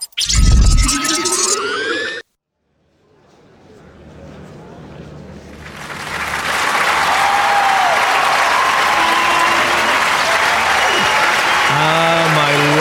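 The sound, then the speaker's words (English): A crowd of students breaks into welcoming applause that builds from a soft patter to a full, steady roar of clapping, with a few cheers poking through. A short tonal burst sounds before it begins. “My Holonet career is nothing compared to the love that I feel from such welcoming applause.”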